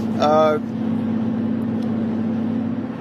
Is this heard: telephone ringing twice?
no